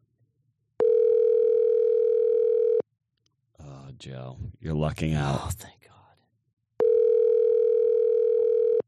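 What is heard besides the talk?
phone ringing tone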